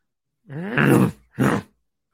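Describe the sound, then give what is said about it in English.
A man's voice imitates a growl in two bursts, a longer rough, throaty rumble followed by a shorter one, loud and low-pitched with no other talk. “Give us a little growl.”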